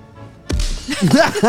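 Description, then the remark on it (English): A sharp slapping punch impact lands with a low thud as a soldier is punched and thrown off a blimp onto the luggage below, then a strained, wavering vocal cry follows. “He punches the soldier and throws him off of the blimp onto the luggage below.”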